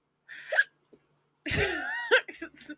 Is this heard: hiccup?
yes